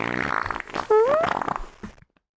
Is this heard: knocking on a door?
no